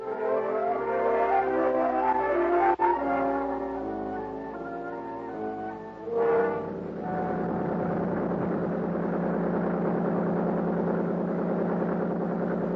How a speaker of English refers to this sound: The big 35 on Buster's boat moved us up the lake at an easy 30 knots.